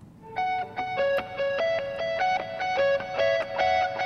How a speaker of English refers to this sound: We also have this lead guitar that comes in.